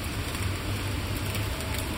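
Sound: heavy rain downpour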